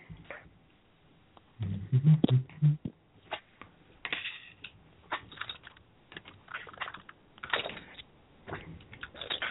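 Tarot cards being shuffled, a series of quick crisp riffles and soft slaps, with brief pauses between bursts and a few low thumps early on.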